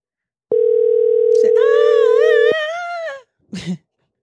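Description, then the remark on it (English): A phone call being placed to someone's sister: a steady, unbroken telephone ringing tone hums for about two seconds while a wavering, sung or howled voice rises over it and trails on alone, followed by a brief noisy burst. “Let's call somebody. Let me call my sister.”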